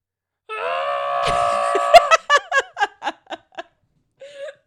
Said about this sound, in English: It sounds like a scream that you're not like 100% committed to. Like you're scared, but you're like not one. You're not committed to the scare. He started it and then got insecure about it.